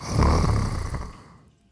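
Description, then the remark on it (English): A boy breathes heavily through the mouth, a single loud, raspy, slightly snore-like breath that gradually fades away; no one speaks. “So this kid's just breathing through his mouth. Yeah, he's breathing really heavy.”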